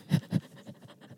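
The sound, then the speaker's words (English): A voice imitates heavy breathing: two strong, breathy huffs close together, then a few softer, quicker pants trailing off, fairly quiet and with no words. “The heavy breathing. That was just, why?”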